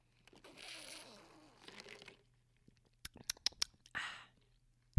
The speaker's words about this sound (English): Like I was saying, I'm drinking coffee right now. Can you hear it? A little ASMR. Let me take a sip.